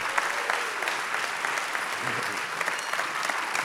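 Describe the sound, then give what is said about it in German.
A crowd at an ICF church morning gathering applauds steadily for guest speaker Geri Keller, dense clapping sustained throughout, with no pauses and no other sounds standing out. “Lass uns doch gerade Geri einen riesen Applaus geben.”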